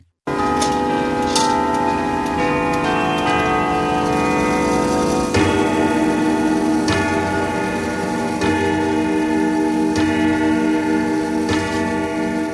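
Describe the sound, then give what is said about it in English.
A clock ticks in steady, sharp clicks over a bed of sustained, ringing chime-like tones that hum continuously throughout, with no voices present. “So today we learn what keeps your clock ticking.”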